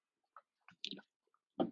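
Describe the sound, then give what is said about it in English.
Someone takes a drink of water: a few soft wet clicks and gulps, then a fuller swallow at the end. Faint and quiet overall, with no talking. “And see, let me drink some water.”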